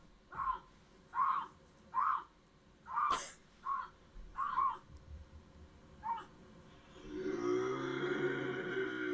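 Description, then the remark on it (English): A bobcat gives a rhythmic series of short, harsh yowling calls, then breaks into a loud, sustained growling snarl that continues to the end, with no voices present. “Bobcats in the Woods”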